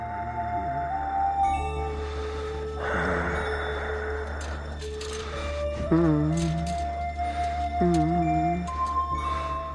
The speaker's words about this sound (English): That night, we see Frank doing a bit of window shopping, staring down storefront mannequins and breathing heavily again.